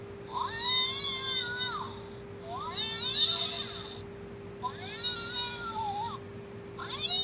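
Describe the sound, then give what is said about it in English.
An angry black cat yowls in three long, wavering, drawn-out cries with short pauses between, a fourth starting at the end, loud over a steady low background hum. “Yeah, now if you piss off a black cat, or piss on a black cat, either one, it will sound like this.”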